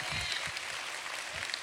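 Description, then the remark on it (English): A church audience claps for God during a sermon, a dense, steady wash of many overlapping claps that holds an even loudness for a couple of seconds without any individual claps standing out. “Come on, can you give him a hand clap in here?”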